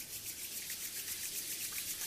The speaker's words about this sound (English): And now we take our hands and rub them again.